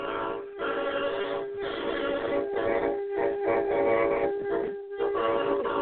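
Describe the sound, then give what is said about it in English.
Loud train horns blow in a series of long, steady blasts, a sustained harmonic tone broken by several short gaps, with no talking over them; people are blowing the horns at a show. “Oh, they're blowing horns. That's a loud one.”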